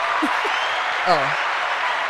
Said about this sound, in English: Oh. Y'all as thought y'all needed to clap for him? As the aforementioned struggle.